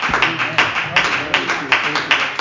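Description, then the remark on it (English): A church audience claps together to welcome a preacher, a dense wash of hands with a steady beat about three times a second, fairly loud, with voices mixed in underneath. “Put our hands together and give him a warm welcome.”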